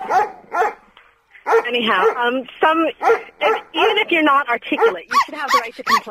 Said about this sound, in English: Sorry, that's my dog. Sorry. You let the dogs out.